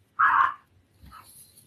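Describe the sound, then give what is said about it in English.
A dog gives one loud bark, then a quieter, shorter bark or yelp about a second later, with no talking over it. “I don't know why the dog.”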